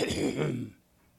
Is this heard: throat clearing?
yes